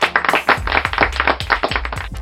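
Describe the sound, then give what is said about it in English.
Audience clapping to welcome a guest: steady, rhythmic clapping at about four sharp claps per second, with dull low thumps under each clap. It stays loud and even across the whole stretch, with no voices. “Help me welcome him, friends. Clap for him, clap for him, clap for him.”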